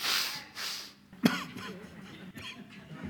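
Breathy sniffles come in two quick drawn-in bursts, followed by a short sharp throat catch and softer nasal breathing, with no one talking.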